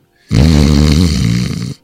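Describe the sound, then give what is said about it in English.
A voice imitates a loud, rattling snore, one sustained buzzy inhale lasting about a second and a half, forceful, with no other talk. “Heard him snoring louder than my dad.”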